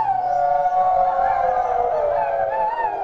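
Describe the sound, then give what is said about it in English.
A crowd from the pup community, a subculture of the leather world, howls together like dogs at an evening event, a loud, sustained chorus of overlapping wavering howls lasting the full few seconds, with no speech. “So the pup community is a subculture in the leather world, and apparently they came out tonight howling”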